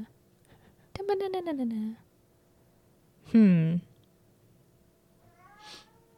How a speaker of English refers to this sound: stop meowing. Shut up.